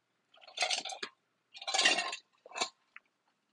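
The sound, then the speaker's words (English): Someone takes a drink of water: three short, wet slurping gulps in quick succession, followed by a tiny click, with no talking. “Had to take a drink. Water. Drink of water.”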